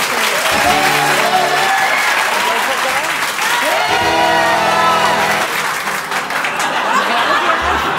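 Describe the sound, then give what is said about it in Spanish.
Steady audience applause fills the whole stretch, a loud, dense wash of clapping with scattered cheers and laughter, and some voices rising through the crowd noise. “Aplauso acá.”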